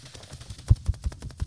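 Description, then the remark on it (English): A voice imitates a helicopter with a rapid, steady chopping rhythm of low, breathy thumps, about five or six beats per second, moderately loud with a few stronger pulses. “What was the helicopter sound like?”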